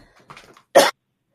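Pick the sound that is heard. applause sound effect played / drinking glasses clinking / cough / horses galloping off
cough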